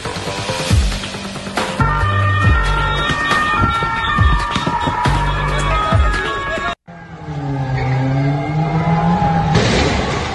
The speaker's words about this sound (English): Stolen car being used as a battering ram. How is that? By these rioting migrants to loot a grocery store.